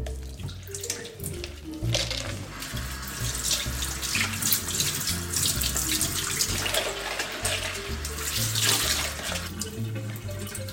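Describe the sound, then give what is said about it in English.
Tap water runs steadily and splashes through a colander of soaked groats for about ten seconds, with shifting gurgles as the groats are agitated by hand under the stream to rinse off their viscous runoff, over soft background music. “And so just keep rinsing it and agitating with your hands until you see the water that's coming out the other side of the colander or the sieve running clear.”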